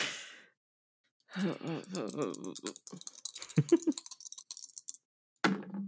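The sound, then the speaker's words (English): A short vocal sound, then dice rattle and clatter across a hard surface in a quick burst of sharp clicks that settle after a couple of seconds, rolling a 9. “I kissed my dice.”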